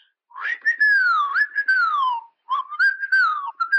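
Someone whistles a wandering melody to herself while walking down a poorly lit maintenance corridor below the Forrester Labs headquarters, sliding pitches rising and falling in two phrases separated by a brief pause, with no talking.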